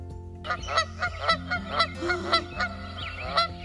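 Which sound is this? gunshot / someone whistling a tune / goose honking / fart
goose honking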